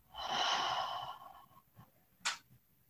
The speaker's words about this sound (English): And we're just going to seal them off with three collective breaths. So we're going to breathe in through our nose and exhale through our mouth.